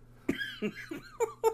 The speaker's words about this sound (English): Oh god, I laughed so hard that fucking cough.